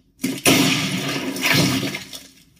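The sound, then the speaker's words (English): A sudden loud gunshot crack as the president shoots himself in the head, followed by a long, wet, gooey splatter of his bug brains hitting a desktop that surges once more before trailing off. No voices. “That last sound was the sound of the president shooting himself in the head and his gooey bug brains hitting the desktop, if you're wondering.”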